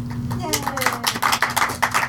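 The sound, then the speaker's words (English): Audience applause at the close of an evening film event: dense, irregular clapping begins after a brief pause and continues steadily, with a low hum and some faint vocal murmuring underneath. “Oh, the applause warms my soul.”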